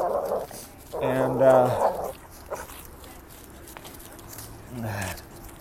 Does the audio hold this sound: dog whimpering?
yes